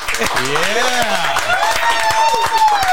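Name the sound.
audience round of applause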